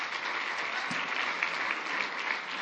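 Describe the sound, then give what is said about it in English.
A church audience applauds steadily during a service, many hands clapping in a dense, even wash of sound that holds at a fairly constant level from start to finish. “And your hand clap is giving glory to God, because God cares about those 200-300 more people that are now able to connect with Him through our services.”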